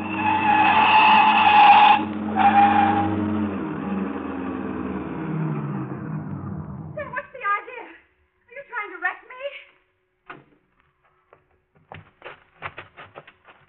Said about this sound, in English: We're coming to that long stretch. No cars behind us and none coming. Step on it now. Run her off the road. Now, run her off in the ditch.